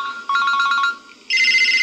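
A telephone rings electronically: a quick trill of about eight bright beeps, a short gap, then a louder, sustained warbling tone in a higher register. No one speaks.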